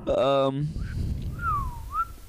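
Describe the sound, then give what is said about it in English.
A person whistles a short, sliding melodic phrase, rising and falling in pitch, moderately loud. It follows a brief burst of voice, with a low background rumble throughout. “I was just whistling some shit, bro.”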